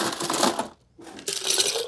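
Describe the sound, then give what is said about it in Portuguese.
Plenty of ice cubes tumble into a clericot of white wine, fruit, triple sec and cognac in two dense bursts of bright, rattling clinks, split by a short pause. No one speaks. “bastante gelo.”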